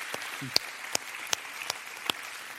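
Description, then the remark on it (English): An audience applauds the Lord Jesus Christ in a steady, hissy wash of clapping, with a handful of sharper, louder individual claps popping out at uneven intervals. The applause is fairly soft, and no one speaks. “Give the Lord Jesus Christ hit applause.”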